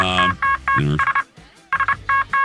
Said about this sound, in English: Holly's here, sending Morse code to you.